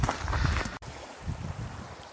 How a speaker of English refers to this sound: So we're about a mile or so into the walk. As you can probably hear, there's a stream in the background.